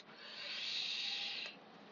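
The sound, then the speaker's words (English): A steady, airy hiss of an asthma inhaler puff lasting about a second and a half, bright and breathy, then dropping abruptly to a fainter trailing hiss. No one speaks. “And let me use an example, and you're going to be hearing me, of course, puffle my puffer, because that's what I do.”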